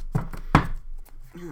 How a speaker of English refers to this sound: I am reading from the Spellcasting Oracle decks again. I totally poker shuffle these. I know some people don't agree with that, but whatever.